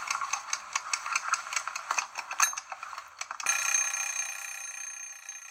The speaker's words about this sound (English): For this, I'm going to use my kitchen egg timer, which has been set for about the time it takes Usain Bolt to run 100 metres.